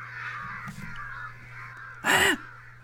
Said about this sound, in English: Why do crows hold noisy funerals for their fallen friends? Do crows mourn? Why? They might do it to warn other crows, actually, to be like, stay away from here, this area is dangerous.